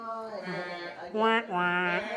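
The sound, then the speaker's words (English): A person imitates a sheep with a drawn-out, wavering "baa" lasting about two seconds, sung fairly loud with a shaky vibrato that swells near the end. “That was a good sheep.”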